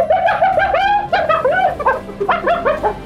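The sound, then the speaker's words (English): A hyena's laughing call: a rapid string of high, wavering yelps that rise and fall in pitch, giggling in uneven bursts for about three seconds, loud and alone without any talking. “Sounds like they're laughing. Laughing? Wait. I do know. It's a hyena.”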